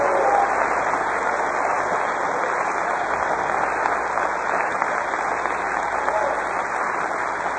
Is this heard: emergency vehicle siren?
no